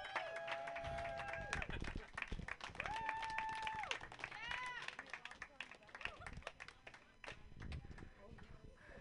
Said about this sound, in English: A round of applause.